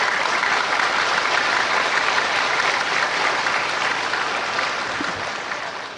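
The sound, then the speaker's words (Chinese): A crowd breaks into sustained applause, a dense, steady wash of clapping that holds at an even loudness for several seconds before easing slightly at the end. No one speaks over it. “怎么不拍手呢？”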